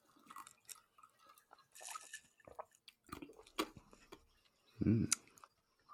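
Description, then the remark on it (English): Quiet sipping of a bourbon mint julep cocktail made with large mint leaves: soft wet slurps, lip smacks and small clicks, ending in a louder swallowing gulp, with no talking. “Okay, shall we give this a try? Yes, let's give it a little sip.”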